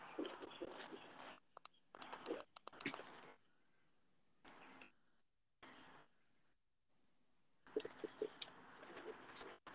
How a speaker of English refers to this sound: Just give me a couple, just give me some of those bird sounds. Can you hit those any louder? Don't think so.